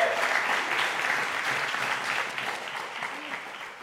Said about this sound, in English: And thank you. Let's applaud all of you out there, I say, but who are part of that.